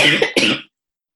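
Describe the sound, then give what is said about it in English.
A person pauses mid-talk to cough: two quick coughs in a row, loud and harsh, the second following almost immediately after the first, then silence. “You know, one thing I see happening, hang on one second, I'm just gonna cough.”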